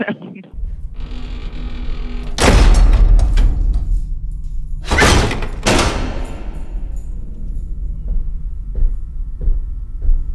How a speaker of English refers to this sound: all the press people were telling him that the sound of the door was the scariest thing, and it made them jump every time. And it's, you know, it's one of those things that, like, you would never think that the sound of the door would be remembered.